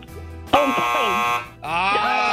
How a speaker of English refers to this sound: I'm sorry. The buzzer came in right before your buzzer